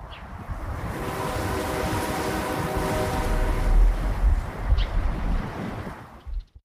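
Strong, steady wind roars outdoors on a Wednesday afternoon ahead of an approaching storm, without a break, a broad rushing noise with low gusty rumbles that swell louder toward the end before cutting off abruptly. No one speaks.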